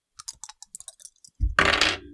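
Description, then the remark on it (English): A quick run of small, sharp clicks as dice rattle in a hand, followed by a louder clatter and rumble as they tumble across a surface, landing on a 6 and a 5. No one speaks. “I will then roll again to do the driving maneuver if Viren isn't there. Okay. Dice.”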